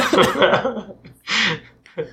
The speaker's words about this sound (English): that made me cough.